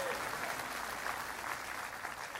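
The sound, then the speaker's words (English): An audience gives the Lord a clap offering, clapping together in a steady, dense wash of applause that holds at an even level for a couple of seconds, with no voices standing out. “If you believe that, give the Lord a clap offering and say amen.”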